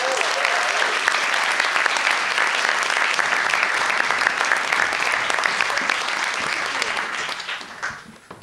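A large audience claps loudly and steadily for several seconds, a dense wash of applause that holds strong before tapering off near the end.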